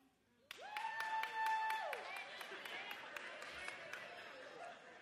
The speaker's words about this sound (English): Got one clap from a married woman and some moans from all the single parent mothers.